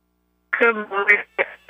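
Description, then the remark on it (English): A tinny, band-limited voice of a caller from Tampa on a phone line, answering who they will vote for, cuts in and out, with the speech chopped into short bursts separated by abrupt dropouts of silence, like a connection breaking up. “Hey, it broke up, and then you said Brody, and then the phone didn't break up.”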